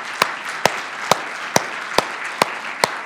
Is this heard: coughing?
no